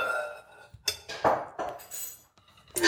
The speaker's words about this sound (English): We don't have drums, but we have pans. Close enough. Pots.